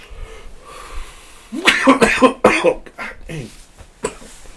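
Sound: coughing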